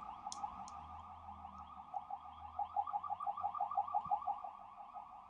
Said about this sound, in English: I mean, oh man, there's always ambulances out here. But yeah, anyway, and it's really distracting. Dude, let him through. These cars are just not trying to let this ambulance through.